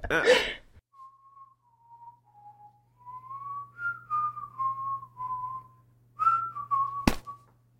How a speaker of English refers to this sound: You're mean! You whistle off key.